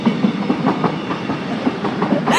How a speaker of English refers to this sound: Yeah. Of course the train is going to go by.